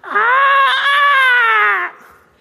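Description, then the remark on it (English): A one-year-old boy cries out from his room at 6 o'clock in the morning in one long, loud, high-pitched wail that holds steady for almost two seconds, then breaks off abruptly into a faint trailing breath. No one speaks. “Every morning at 6 o'clock in the morning, this is what we hear from his room.”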